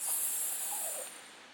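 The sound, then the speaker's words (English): A person voicing the snake in a telling of the story of Adam and Eve imitates a snake with a long, steady, breathy hiss that holds for over a second before easing off slightly, with no words spoken. “Hissed the snake again.”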